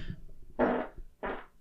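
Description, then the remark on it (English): Two short farts, the first louder and longer with a buzzing, sputtering tone, followed after a brief gap by a second shorter burst, with no talking. “I have to fart.”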